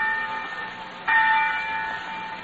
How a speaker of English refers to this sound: Next week, from hundreds of famous and well-loved campuses, the bells of our colleges will be calling to young America. Nearly 2.5 million boys and girls will respond to the call of those bells.